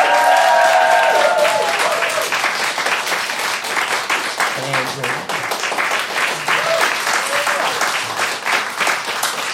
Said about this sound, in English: It is neck and neck as we go to the end of the first half of Pun and Games. Please give a huge round of applause for both of our teams!